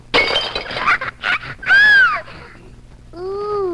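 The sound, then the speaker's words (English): A loud crash of a vase shattering after an 18-month-old toddler hurls a ball, with scattered bursts of breaking fragments, followed by a rising-and-falling cat yowl and a softer, drawn-out meow. “At 18 months old, he'll hurl the ball through the room, through space.”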